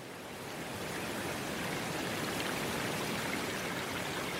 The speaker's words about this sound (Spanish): No tardé en descubrir al pie de la montaña un verdadero torrente de agua viva que brotaba del suelo para ir a arrojarse, algo más lejos, en una grieta de los montes.